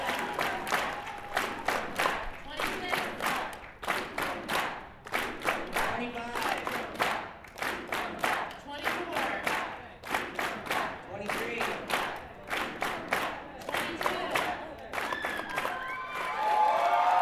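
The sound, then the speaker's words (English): A roomful of people applauding, dense steady clapping that rises and swells in waves, with scattered cheers and shouts breaking through the loud, sustained applause. “People are popping up all around, and the whole room is ringing with applause.”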